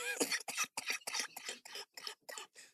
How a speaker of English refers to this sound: I've been battling this cough. I'm sorry.